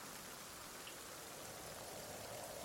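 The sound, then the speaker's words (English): Steady rain hisses continuously with a soft, windy rush behind it, an even wash of sound that holds constant for the whole stretch, with no voices. “Entering in through the door with a creak as the wind and the rain blows behind him”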